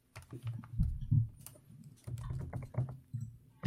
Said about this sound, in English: is frantically typing.